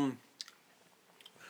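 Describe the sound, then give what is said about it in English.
Chewing of sour green apple candy right into the microphone: a few sharp, wet mouth clicks and smacks spaced irregularly, following a brief snippet of voice at the very start. “I'm chewing right into the mic and you're moving your face away, which is probably the best way to go.”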